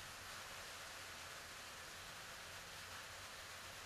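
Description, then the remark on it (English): Steady, dense hiss of rain drumming on a tin roof, an even wash of countless tiny impacts with no pauses or voices, holding a constant, soft level throughout. “Today, I want to talk about the weather, how it affects us, but more importantly, the rain, especially when the rain is hitting on a tin roof.”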